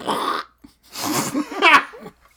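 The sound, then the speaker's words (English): A voice blurts out an abrupt, noisy burst imitating a really abrupt, surprising, loud fart, then follows with a couple of breathy, laughing bursts, all fairly loud. “But when I first read that, for some reason, I read it as the noise of like a really abrupt, surprising, loud fart.”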